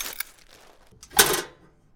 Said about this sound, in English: I dropped the broken pieces in the garbage.